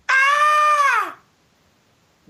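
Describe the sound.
A man lets out a loud, high-pitched falsetto scream imitating the scream of 'Screaming Daphne', held steady for about a second before sliding down in pitch and cutting off into silence.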